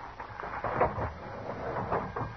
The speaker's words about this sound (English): As soon as the crowd left the depot, we walked down to the car. Crawled under it. Pounded on the door on the other side.